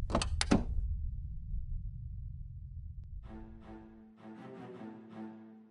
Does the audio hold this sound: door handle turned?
yes